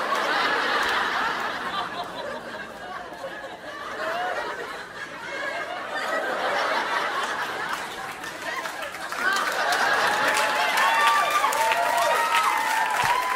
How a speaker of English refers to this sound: She got an applause break for that. She got an applause break for that shit.